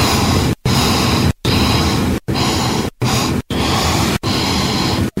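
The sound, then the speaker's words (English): A recording of a man's sniffs is played back: a series of about seven loud, breathy sniffs, each a long hissing inhale cut by brief silences, repeating in a steady rhythm with no talking. “Well, let's listen to these sniffs and find out one more time.”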